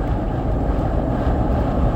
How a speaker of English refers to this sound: Oh, get out of my lane with your big boat on a trailer.